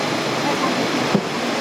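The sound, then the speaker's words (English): Water flows steadily through a cup-washing tub on a reusable-cup cleaning production line, a continuous, fairly loud rushing and churning with no pauses. The current pushes onward a cup that a worker has placed in the tub, and the water holds stain remover powder. A small splash comes near the end. “A worker assesses how dirty the cup is and places it in a tub. The water current will gently push it onward.”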